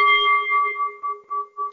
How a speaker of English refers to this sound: Can I have the bell again, please? Do it again.